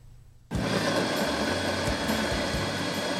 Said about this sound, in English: Slices of papaya go into the blender, then milk. They both have sweet and silky flavors.